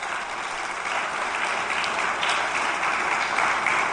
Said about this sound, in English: Please hold your applause till the end, because we'll show appreciation for everybody.